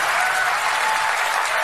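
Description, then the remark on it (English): Steady, dense applause from an audience, a continuous loud wash of many hands clapping with no pauses or voices over it. “What are they clapping about?”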